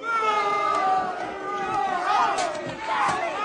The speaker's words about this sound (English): Yeah, we deserved the boo. We deserved it. We deserved to get booed.